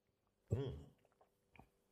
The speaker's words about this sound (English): So there's your Jack Rose. Okay. I'm going to take a little sip as well because I want to see how that Calvados comes through on that.